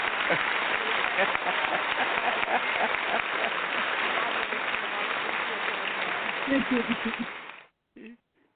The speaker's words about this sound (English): Well, we are going to just have to give you some applause for the great work that you've done with this.